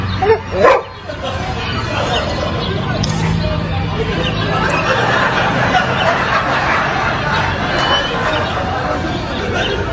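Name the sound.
dog barking and yipping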